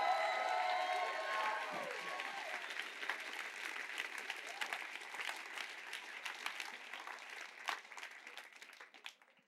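An audience breaks into loud, sustained clapping mixed with whoops and shouts, giving the Lord a clap and a shout, the dense applause holding steady before gradually thinning out and fading toward the end.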